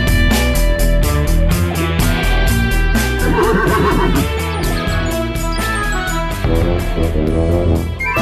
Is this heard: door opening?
no